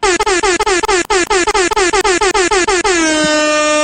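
Rapid, loud air horn blasts repeat in a stuttering rhythm, about a dozen short bursts, then one long sustained honk that rings out at the end. No one speaks.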